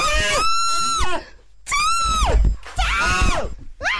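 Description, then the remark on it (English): A woman yells loudly in three long, high-pitched, strained bursts with short pauses between them, with no clear words. “Oh, I'm so sorry for yelling, guys. I just realized how loud I was doing that.”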